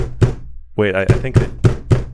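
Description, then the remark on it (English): A sharp knock on a door, then a quick series of four firm, evenly spaced, loud raps, with a brief voice sounding between the first knock and the rest. “I think someone's at my door.”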